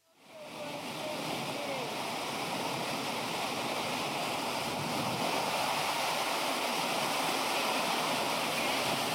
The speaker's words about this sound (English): They have this long bridge that goes over the James River. I recorded a video because the water was so loud. Listen to this right here.